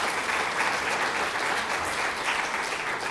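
Steady audience applause welcoming a panellist at an evening panel event at a museum, a dense rush of many hands clapping at an even loudness for about three seconds, with no voices standing out.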